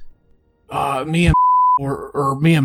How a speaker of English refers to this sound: sorry for that beep you heard there.